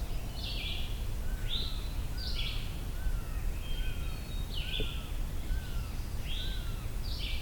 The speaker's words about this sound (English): This red-shouldered hawk is louder now.